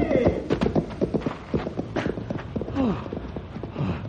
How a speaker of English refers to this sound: Oh, it scared my horse away.